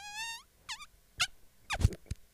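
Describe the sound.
A voice imitates a fart: a high, wavering squeak that slides downward, then a few short sputtering, wet-sounding bursts, the last ones lower and punchier, with no talking.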